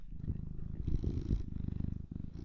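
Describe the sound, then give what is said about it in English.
The neighbour's cat purrs in a steady, rumbling rhythm of low pulses, fairly quiet and continuous with no voices over it. “Not Gary, the neighbour's cat. The cat wants to say something.”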